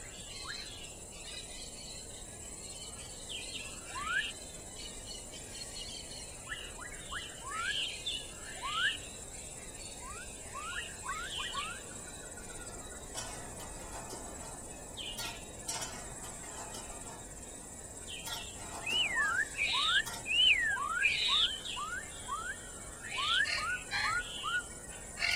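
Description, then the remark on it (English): A Spix's macaw (blue macaw) calls: short, rising squawks repeated in loose bursts over a steady background hum of crickets and insects. “And here are the sounds of the Spix's macaw.”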